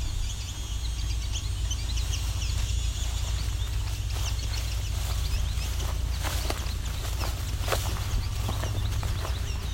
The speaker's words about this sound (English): Also hearing some juvenile chipping sparrows.